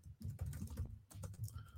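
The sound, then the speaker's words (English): Quick, uneven keystrokes clatter on a computer keyboard as someone types a tweet to RJ City, in a steady burst of typing, with short pauses between clusters of taps and no voices. “Dear, I am tweeting at RJ City from our podcast account.”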